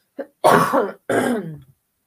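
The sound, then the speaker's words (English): A brief catch in the throat followed by two harsh, raspy coughs from a lingering cough after COVID, fairly loud, each burst trailing off before the next, with no talking. “One day this cough is going to be gone.”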